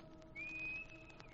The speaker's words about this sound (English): When I come back, I'll stand in the dock and whistle. Like this.